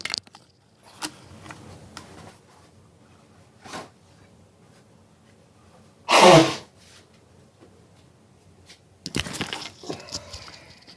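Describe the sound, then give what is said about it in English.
A single loud, short honk of someone blowing their nose after taking off their headset, surrounded by quieter rustling and handling noises, with another brief noisy burst near the end and no talking. “So if y'all will just hang on, I'm going to take off my headset and blow my nose.”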